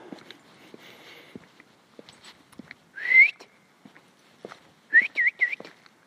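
A person whistles to call a dog: one loud rising whistle, a short pause, then three quick rising whistles in a row, with faint footsteps crunching underneath.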